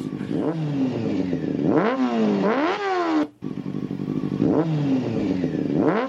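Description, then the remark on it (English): A voice imitates a motorcycle engine revving, with rising and falling buzzy vroom sweeps repeated twice in two bursts separated by a brief pause, loud. “We're both on the motorcycles yelling compliments.”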